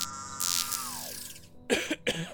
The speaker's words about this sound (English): I heard that cough. Hello? Who's there?